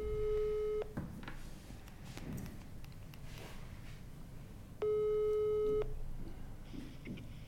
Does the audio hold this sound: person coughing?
no